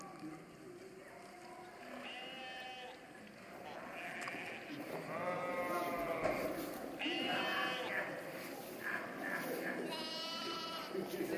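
Sheep bleat repeatedly, about four wavering, nasal calls spaced a few seconds apart, fairly loud over a steady outdoor background hum.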